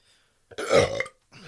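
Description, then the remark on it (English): A single loud burp lasting about half a second, deep and throaty with a rough, rolling tone, followed by a brief quiet gap and faint noise. “Of an expressive burp into his mouth from his mate.”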